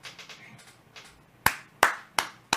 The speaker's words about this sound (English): Clap it up for the horror show.